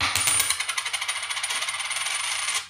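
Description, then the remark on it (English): A flipped coin lands tails and spins on a hard surface, its bright metallic ringing pulsing in quick, steady wobbles for a couple of seconds before it settles and goes quiet. No one speaks. “Heads Quincy Pondexter. Tails Isaiah Cannon.”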